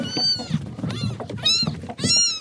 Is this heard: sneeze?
no